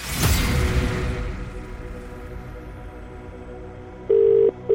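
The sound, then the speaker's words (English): A phone call being placed: a brief rush of handset noise and faint tones, then the steady buzzing ringback tone starts up loud, one ring followed by the start of another. “I'm going to make that phone call right now.”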